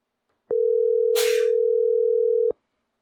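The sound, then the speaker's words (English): A telephone ringback tone sounds once: a steady, clear two-second hum that starts and stops cleanly, with a short hiss of rustling noise partway through and no voices. “We should give Wade a call now.”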